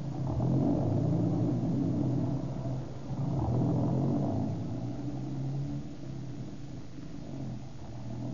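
A low, steady engine rumble drones throughout, surging slightly louder around the first and fourth seconds before settling into an even idle-like hum. No voices are heard.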